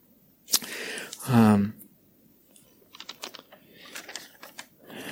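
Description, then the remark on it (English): A piece of paper is handled, giving a sharp rustle and then a run of crisp, scattered crinkles and taps, with a brief vocal sound early on. “Bit of paper.”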